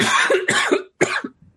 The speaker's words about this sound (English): I say as I cough.